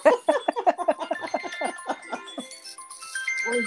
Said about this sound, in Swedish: Katrins telefon ringer och hon vet inte hur man ska stänga av. Hon fick ju FaceTime. Jag satte där på flygplansläge.